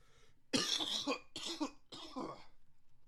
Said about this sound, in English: Damn, I got to cough again. I might have to end the episode because I'm going to keep coughing. I should have brought more cough drops.